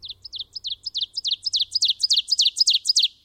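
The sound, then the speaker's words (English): An ovenbird sings a loud, clear series of repeated two-part chirps that build steadily in volume over about three seconds, with no other sounds. “Ovenbird.”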